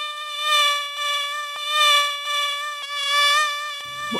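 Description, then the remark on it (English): A continuous high-pitched mosquito whine, steady in pitch with a thin, buzzy tone that swells and fades in slow waves, briefly broken by tiny dropouts, with no talking. “Oh, jeepers, I see it now. It's a mosquito.”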